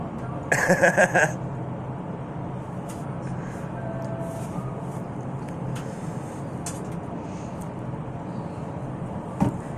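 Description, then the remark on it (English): A bus rumbles outside with a steady low engine drone throughout, opening with a brief loud burst of hissing brakes, then fading into continuous traffic noise. “This fucking bus is ridiculous.”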